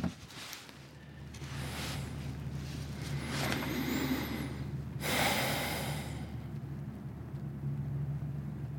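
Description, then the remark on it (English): A logging truck on a road half a mile away rumbles as a steady low drone throughout, heard in absolutely still air at the quietest time of day, with a few breathy gusts and a brief bird chirp high above. “That's a logging truck. The road is a half mile away.”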